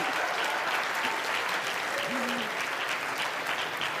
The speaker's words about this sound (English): Ladies and gentlemen, would you give a great big round of applause for the Avengers?